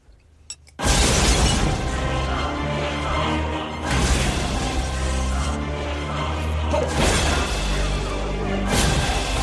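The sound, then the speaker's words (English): Loud cinematic booms and crashing blasts from explosions in a movie trailer erupt after a brief quiet start, layered with rumbling low end and swelling dramatic music, peaking repeatedly. “They want you to know how many explosions are in this movie.”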